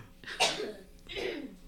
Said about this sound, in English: Sorry. She had to clear her throat.